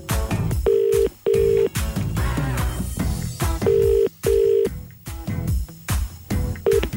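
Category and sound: signal or alarm, telephone keypad dialing tones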